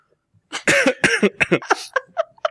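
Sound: hacking cough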